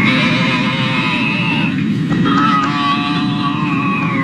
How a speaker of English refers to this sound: into the PA system on an American Airlines flight from LA to Dallas this month and wouldn't stop making weird moaning and grunting sounds. They were like half pleasure, half pain. It was really interesting, and this is what it sounded like here.